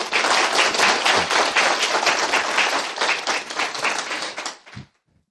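A crowd applauds steadily for about four and a half seconds, a dense wash of many hands clapping at once, then the clapping fades out quickly into near silence.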